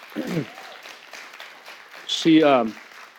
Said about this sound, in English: So I think we should give her a round of applause.